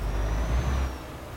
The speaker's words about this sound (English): Oh, there's a car coming. I'm going to wait for it.